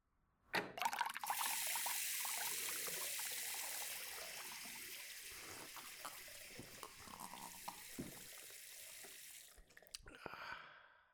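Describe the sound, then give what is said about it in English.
Tap water from a kitchen sink gushes steadily for about nine seconds, a continuous rushing stream filling a glass, then cuts off, followed by a brief clink and splash. “I looked down at my glass that was once filled with tap water from the kitchen sink”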